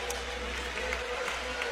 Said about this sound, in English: And now you hear the crowd about half full, almost three-quarters full on the far side with the Chestatee fans.